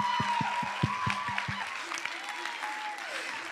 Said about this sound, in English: Give Jesus a big old hand clap of praise.